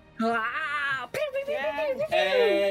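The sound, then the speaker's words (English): A voice imitates air horns with three loud, sustained, buzzy blasts in quick succession, each held tone briefly wavering in pitch before cutting to the next. “But those are my attempts at air horns.”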